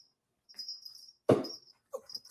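A female miniature pinscher puppy named Penny whimpers in thin, high-pitched whines, broken by one sharper yelp midway, then a few more whiny cries. No one speaks.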